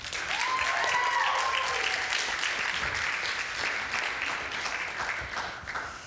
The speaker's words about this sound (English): So I want you all to give a big round of applause for